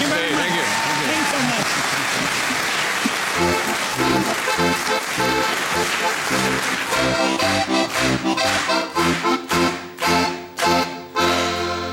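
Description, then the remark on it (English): A crowd bursts into loud, dense applause with some whoops and cheers, the clapping gradually thinning into sparser, more distinct claps toward the end. “Give it up”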